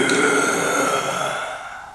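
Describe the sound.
A single heavy, rasping breath like something sleeping, heard at a cavern entrance: a loud, throaty exhale drawn out for about two seconds, slowly fading at the end. No one speaks.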